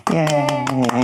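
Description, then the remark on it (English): A drawn-out, steady cheering voice holds one pitch while a handful of sharp claps cut through at a quick, fairly even pace, about four or five in a second. “Everyone clap for me.”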